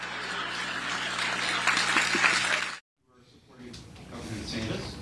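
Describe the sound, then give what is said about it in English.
A dense roar of audience applause mixed with crowd voices and laughter from the audience at a Governor Haley campaign event in New Hampshire cuts off abruptly, then a softer wash of clapping and chatter returns. “So the applause and laughter you heard in the audience in New Hampshire probably not will be the same here tonight, where we expect Haley to likely clean up that answer.”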